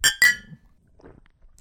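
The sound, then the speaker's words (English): Two bright glassy clinks in quick succession as shot glasses of hard liquor, New Amsterdam, tap together in a toast, crisp, followed by quiet faint rustling and handling sounds. “We're going to do a shot to wet the whistle a little bit. Cheers.”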